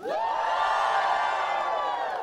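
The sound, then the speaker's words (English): A crowd cheers loudly and steadily for about two seconds, a dense wash of high whoops and shouting voices that swells at the start and holds before easing slightly at the end. “Now cheer.”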